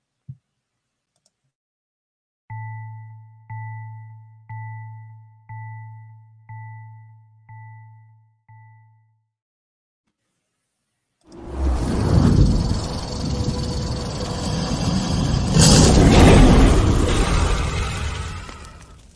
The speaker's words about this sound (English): And welcome back from our short commercial break, which was really just me hitting the gong here and moving along.